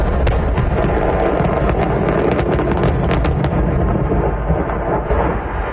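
Heavy, booming explosions rumble continuously, with sharp cracks and bursts layered over a dense low roar, loud and distorted, recorded on a phone from maybe half a block away.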